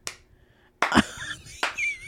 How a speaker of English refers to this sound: I'm sorry. I get a slow clap for not killing someone. I'm so proud of you.